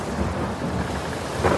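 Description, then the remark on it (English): A thunderstorm rumbles with deep, rolling thunder over steady rain, the low roar filling the whole moment, with a brighter swell of rain near the end. No voices. “Actually, they ran into a massive storm.”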